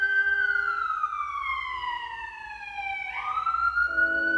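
A siren wails steadily, its pitch sliding slowly downward and then sweeping back up, with a low rumble underneath, like an emergency vehicle passing. No one speaks.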